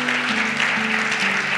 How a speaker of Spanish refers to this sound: Dar un aplauso fuerte, Señor.